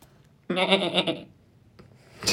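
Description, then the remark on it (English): A person imitates a mountain sheep's bleat with one loud, wavering, nasal cry lasting under a second, then falls quiet except for a brief breathy noise near the end. “Go ahead, mountain sheep.”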